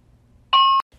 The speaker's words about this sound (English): Sorry, they're doing alarm testing in my my building.